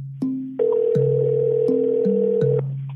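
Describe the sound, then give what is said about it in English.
A single steady ringback tone on an outgoing phone call to a GBI special agent in Columbus lasts about two seconds, heard over a low, shifting droning tone underneath. No one speaks. “picks up the phone and calls Special Agent”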